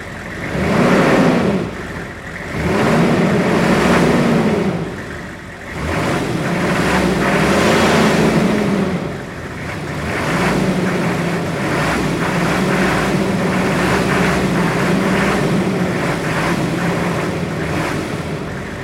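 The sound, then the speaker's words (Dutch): The engine of a Hummer SUV roars loudly, revving up and down in several surging swells over a deep, steady rumble, with no voices present. “Maar ik wou toch even, omdat het radio is, even de Hummer laten horen.”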